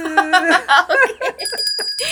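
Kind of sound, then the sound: sound effect, correct-answer ding-dong chime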